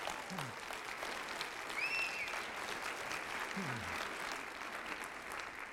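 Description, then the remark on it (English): A crowd claps steadily in sustained applause for the men in the audience on Father's Day, a dense, even wash of many hands at moderate loudness, with a few brief tonal whistles or cheers rising above it partway through. “Whether you're a father, grandfather, or a coach, or a mentor, you all are fathers, so let's give the men in our audience a wonderful round of applause.”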